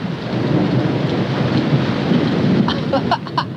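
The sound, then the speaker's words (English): A thunderstorm roars steadily overhead with heavy rain and a deep, rumbling wash of thunder, loud, not yet at its full ferocity, with a few sharper crackles near the end and no voices. “you want to hear what the storm really sounds like. Can you hear?”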